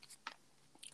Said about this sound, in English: I'm using my moonology cards. I'm shuffling.